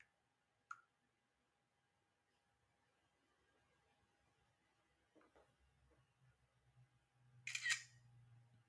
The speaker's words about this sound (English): It's me typing again.